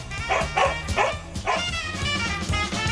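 A dog named Bo barks repeatedly in quick bursts, four or five sharp yips, with a steady murmur of background noise underneath.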